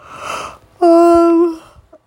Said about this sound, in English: Sorry, I'm yawning so much, you guys.